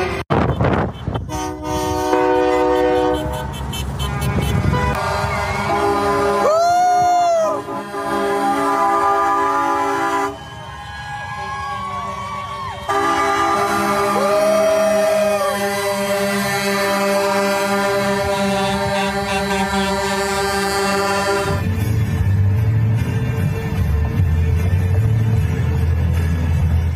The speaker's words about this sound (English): Wow, this is a huge look, and they go forever. This is by Action Center outside of Edmonton, heading to Calgary, January 23rd, 2022. Convoy. More than trucks, lots of cars and trucks. Very impressive. Goes on forever.